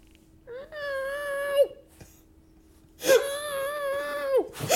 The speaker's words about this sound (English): And she took the goddamn cat with her because he was, you know, making all the ruckus as we recorded our last episode. As cats do. I can hear his face shoved under the door just meowing. Meow.